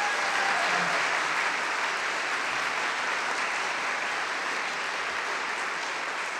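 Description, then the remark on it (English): An audience at an arts event in Seattle applauds steadily for several seconds, a dense, even wash of many hands clapping at a fairly loud, constant level with no voices standing out. “Let's give Reggie one more round of applause.”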